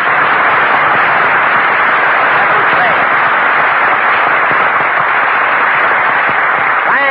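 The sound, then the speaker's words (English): Sustained applause from a large studio audience greeting Jack Benny on the last program of the season, a dense, steady wash of clapping that stays loud throughout, with faint voices mixed in beneath it. “Never mind, Jack Benny, applause.”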